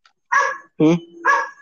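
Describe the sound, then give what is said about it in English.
A neighbor's dog barks three times in quick succession, loud, each bark short and sharp with a brief pause between them. “Bro, shut your dog up.”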